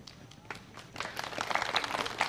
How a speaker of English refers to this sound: Not everybody gets applause on their birthday.